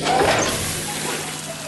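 Water squirts from two watering cans in two jets of sparkling water toward an animal car: a steady, hissing spray that starts with a brief splashy burst, then continues evenly for over a second, fairly loud, with no voices.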